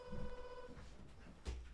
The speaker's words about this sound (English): My buzzer's going off. Bear with me, guys.